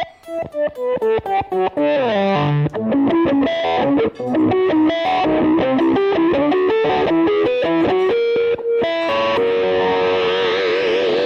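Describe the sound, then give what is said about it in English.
An electric guitar run through an Electro-Harmonix micro synthesizer pedal, without delay, gives a loud, buzzy, synth-like tone: quick choppy notes at first, then a flowing melodic line ending on a wavering sustained note, with no talking. “It's called the micro synthesizer. By Electroharmonix.”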